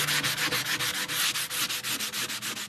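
Wood being sanded by hand in quick, steady back-and-forth strokes in an oud-making workshop in Baghdad, a loud, raspy hiss repeating about seven or eight times a second with no voices.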